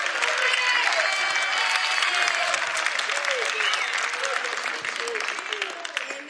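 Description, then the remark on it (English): A church audience breaks into sustained applause for God during worship, a dense wash of many hands clapping with scattered cheers and voices mixed in, steady and loud before easing slightly toward the end. “Come on, give God a round of applause.”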